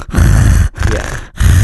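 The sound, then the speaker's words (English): Three loud breaths blown straight into a microphone by a person with a stuffy nose, each a rough, rumbling burst of air separated by brief pauses, with no talking. “You're breathing right into the microphone.”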